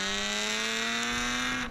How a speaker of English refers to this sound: That is an E-type Jag. Or an Aston Martin with a similar XK-type engine in it. Or an Eagle Speedster. Yeah. It's an E-type Jag. It's not a... It's a Jaguar engine.